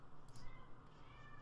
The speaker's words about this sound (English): Can you guys hear my cats pretending to be murdered?